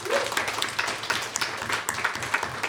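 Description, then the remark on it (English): Audience applause at a live film review event, thanking the guest reviewers: a dense, steady wash of many hands clapping, bright and crackly, sustained throughout without pauses, with faint cheering or voices mixed underneath. “Round of applause.”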